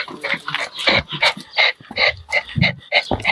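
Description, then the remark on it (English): An elderly dog pants rapidly and excitedly, a steady run of quick, breathy huffs about three per second, with no talking over it. “Tweety birds and hyperventilating elderly dogs.”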